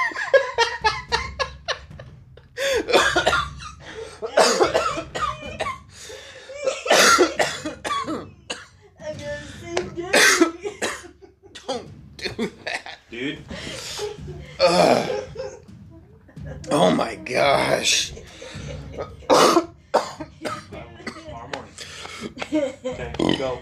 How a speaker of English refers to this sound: Excuse me. I was coughing so hard, my gosh.